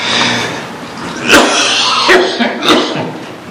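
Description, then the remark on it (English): A person coughs several times in quick succession from something tickling their throat, three sharp, harsh bursts spaced under a second apart, fairly loud over a low background. “I'm about to cough.”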